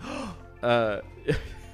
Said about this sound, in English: Gasp.